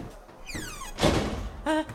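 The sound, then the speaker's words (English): A door swings shut at the start of a three-minute murder mystery game, with a falling creaky squeal, then lands with a solid thud, followed moments later by a short ringing tone. No one speaks. “3 minutes from when the door closes.”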